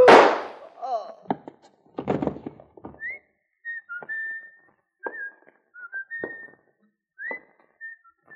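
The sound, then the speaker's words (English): A person whistles a tune in short, clear notes with brief pauses between them. Several loud, sharp thumps and crashes come just before the whistling begins. “It's the whistling killer.”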